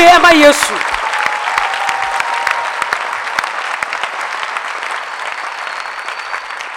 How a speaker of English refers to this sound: You have to call on God. Clap your hands properly for Jesus.